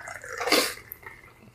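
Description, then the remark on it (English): A brief pour of liquid swells into a bright, splashy gush for under half a second, then trails off into quiet, faint drips, with no one talking. “ASMR, listen to that smooth pour.”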